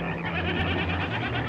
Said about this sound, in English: That sounds like a goat.